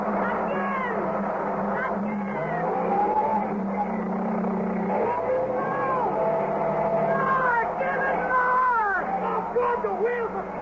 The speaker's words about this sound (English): The rope. He's tying it onto the car. Won't work. The wheels, they're just spin in this sand. It won't work.